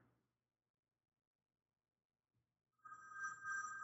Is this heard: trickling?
no